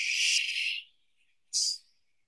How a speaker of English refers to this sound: I love that. White noise, like a reverse cymbal, like a riser.